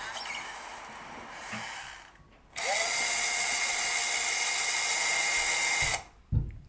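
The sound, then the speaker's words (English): An electric power drill whirs loudly and steadily for about three seconds, preceded by quieter mechanical rattling, then cuts off abruptly with a short clunk. “An electric screwdriver. A drill. Yeah, a drill.”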